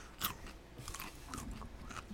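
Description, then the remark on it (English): Crisp crunching as a pickled carrot is bitten and chewed, with sharp bursts of crackle repeating irregularly over about two seconds and no talking. “Yeah, listen to this crunch.”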